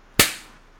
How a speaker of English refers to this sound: Okay, hold up. I'm going to clap us in again.